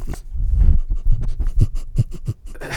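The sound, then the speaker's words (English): A dog named Maggie pants, snuffles and snorts into a microphone in a quick, uneven rhythm of breathy bursts, with scratchy rustling in between. The sounds are loud and there is no talking. “Fans who like dog ASMR are really going to enjoy that.”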